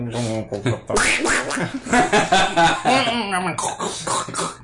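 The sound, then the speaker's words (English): A human voice imitates a duck, letting out a run of loud, nasal quacking sounds, rapid and uneven, with brief breaths between bursts. “That's the noise I want humans to make.”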